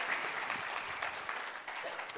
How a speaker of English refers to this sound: Isn't that awesome? Yeah. Yeah, we clap for that.